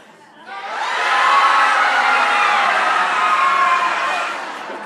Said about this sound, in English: Okay, ready? Let's give a little primal scream.